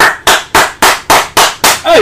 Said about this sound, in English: Clap.